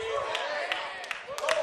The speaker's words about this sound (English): Hallelujah. Come on, somebody. Maybe you'll clap a little bit more because that was a direct quote.